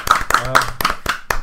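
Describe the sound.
Brief applause for a show guest at the close of an interview: about six sharp, evenly spaced hand claps at a steady rhythm, moderately loud, with a voice talking faintly underneath.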